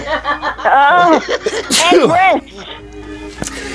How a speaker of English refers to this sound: Excuse me. You guys made me sneeze.